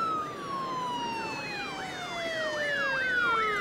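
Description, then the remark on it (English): A taxi ambulance siren wails as the vehicle arrives, a rapid rising-and-falling yelp with a steady tone sliding downward beneath it, loud and continuous with no talking. “I believe that is the taxi ambulance arriving now.”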